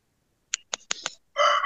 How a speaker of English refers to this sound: Okay. Oh, I hear a chicken or a rooster. Roster. Yeah. Nice. Whose rooster is that?